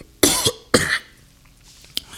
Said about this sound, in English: I'm coughing.